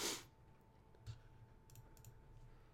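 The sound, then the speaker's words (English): A few sparse, light computer keyboard clicks as someone types a search, scattered irregularly over a faint steady hum, with a louder burst at the start and no one speaking. “All I'm typing right now is TikTok Indian crying.”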